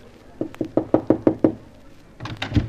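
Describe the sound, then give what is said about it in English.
A quick run of about seven firm, evenly spaced knocks on the door of a manager's office, fairly loud, followed by a brief muffled rustle after a short pause. “Shall we knock or just barge in? Oh, knock.”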